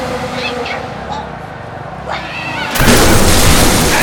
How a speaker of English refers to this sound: He's blown up everything.